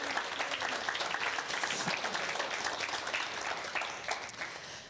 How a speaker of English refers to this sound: You guys make church happen and we honestly love the fact that you're contributing. So well done. Let's give them a clap.